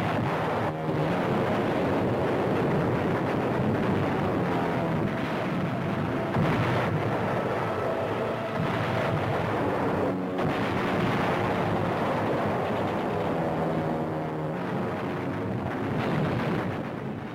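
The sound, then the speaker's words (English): Bombs dropped by Navy bombers explode across fortified islands of the Truk Atoll in a dense, continuous barrage, a loud roar of rumbling blasts with a few sharper bursts standing out, and no voices. “Every fortified island in the Truk Atoll is given a thorough blasting by a sky armada of overwhelming force that hits the Japs like a bolt from the blue.”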